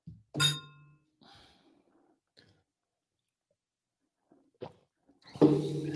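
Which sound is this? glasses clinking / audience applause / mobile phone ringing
glasses clinking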